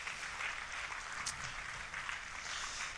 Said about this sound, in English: Let's thank God with an applause this morning for our children's ministry. We really do thank God for them.